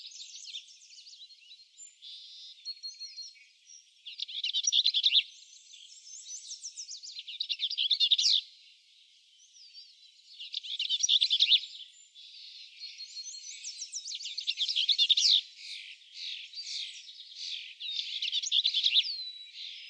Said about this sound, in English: And hear the sound of the least bells vireo.